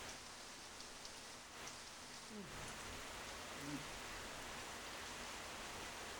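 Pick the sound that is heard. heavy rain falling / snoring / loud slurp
heavy rain falling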